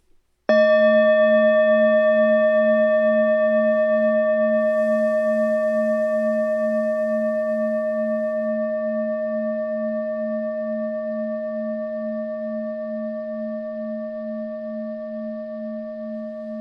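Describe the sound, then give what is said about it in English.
A small bell is struck once, its clear, steady ringing tone hanging in the air and fading very slowly over many seconds. A brief soft rustle passes early on; no one speaks. “There's the small bell.”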